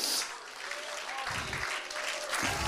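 An audience claps in praise of the Lord during worship, a dense wash of many overlapping hand claps that stays fairly loud throughout, with brief swells of low rumble and faint voices mixed in.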